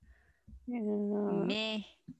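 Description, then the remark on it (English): A miniature Schnauzer lets out a single drawn-out, tonal whine-like vocalization lasting about a second, rising in pitch near the end, fairly loud, with brief low thumps around it. “Yeah, he's a Woof, that's okay. Alrighty, he just spoke meh to me.”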